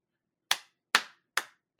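Four sharp hand claps in a slow, steady rhythm, each a crisp, bright snap that fades quickly, with silence between them and no voices.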